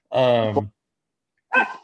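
A dog barks twice in the background, fairly loud: a drawn-out, throaty bark, a second of silence, then a shorter, sharper one.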